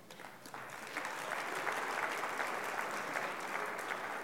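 A church audience breaks into steady, sustained applause, many hands clapping in a dense, even wash that swells within the first second and holds loud throughout.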